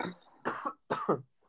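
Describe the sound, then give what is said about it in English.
Two quick sneezes in succession, sharp and breathy bursts, with a short pause between them and a faint murmur of breath trailing after. “Bless you. Thanks.”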